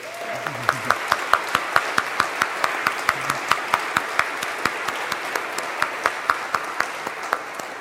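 Steady applause from an audience at an ordination service for standing clergy from the sponsoring parishes, dense and continuous with a few louder individual claps standing out in a regular rhythm, lasting several seconds at a moderate level.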